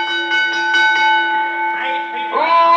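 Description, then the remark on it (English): A bell rings out to get attention before a match is announced to the crowd, its bright, steady tone sustaining through the whole moment while faint voices and crowd murmur stir underneath. “Bell me.”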